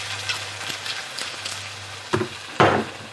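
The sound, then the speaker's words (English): Wine is poured into a hot pan: a low crackling sizzle over a steady hum, then two sharp bursts, the second a loud, rushing hiss of liquid hitting the hot metal. “Wine going in. Oh, love that sound.”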